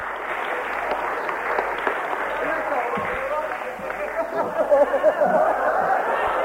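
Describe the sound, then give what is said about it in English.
A crowd in Ipswich applauds a young man steadily for several seconds, a dense wash of clapping with a few voices and cheers mixed in, swelling slightly toward the end. “It's only the second time I've seen him, but give him a clap.”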